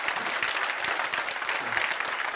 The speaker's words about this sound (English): Somebody say amen and clap your hands right there. Will you do that?